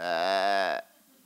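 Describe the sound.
A person imitates a sheep's bleat with a single loud, wavering "baa" lasting just under a second. It stops abruptly into near silence.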